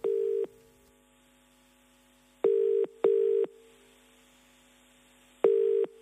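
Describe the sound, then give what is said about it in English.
Four short, steady electronic phone tones of a call to an Italian restaurant in Melbourne sound in an irregular rhythm, each about half a second long, loud, with quiet gaps between them and no voices. “Here is that phone call.”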